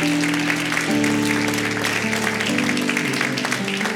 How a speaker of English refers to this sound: We ought to give the Lord a hand clap of praise for that.